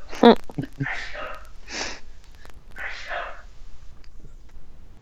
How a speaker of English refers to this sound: Is someone sneezing? Yeah, my dad. I didn't know if that was on the show. Or no, that's my dad. He's about like three floors away from me right now, oh but that's goodness. How loud he sneezes. That's a great sneeze. Wow.